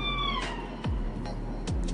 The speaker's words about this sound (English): Sorry about that. There goes an ambulance. Hopefully that person's okay.